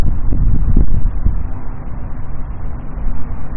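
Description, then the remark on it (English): Wind blows in a steady, loud, low rumble for the whole stretch, with a few gusty surges early on and no voices over it. “What's that which is feeling this wind?”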